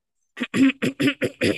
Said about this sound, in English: Let me clear my throat.